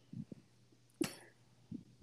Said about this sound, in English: Is that a cough? I ain't no I'm cough. I heard a sneeze.